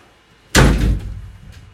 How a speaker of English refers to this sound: I've talked to you about slamming the door many a time.